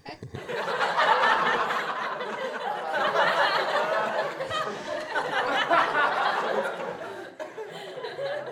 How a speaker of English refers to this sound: So that was like the laughter for like Friends or something, like one of them shows, Saved by the Bell or something like that.